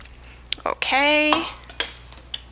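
A metal pot holding 2.5 cups of water clanks as it is set down on a stovetop to be heated to boiling for French press coffee, with a few clinks and knocks around a brief, resonant ringing tone in the middle.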